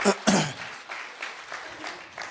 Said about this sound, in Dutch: Come on, give Pastor Phil a hand. Kom, laten we hem applaus geven.